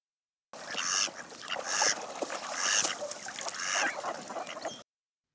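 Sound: mallard duck calls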